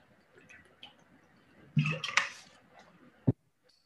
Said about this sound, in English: And also, I just a drink of water quick.